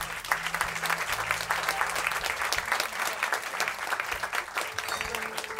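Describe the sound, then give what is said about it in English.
An audience at the Village Vanguard jazz club claps steadily and energetically during a live album recording, a dense, continuous patter of applause that holds at the same lively level from start to finish, with faint low tones humming underneath. “particularly tonight, because we are recording a live album at the Village Vanguard, so we're glad to have you here to have some of your applause on the album.”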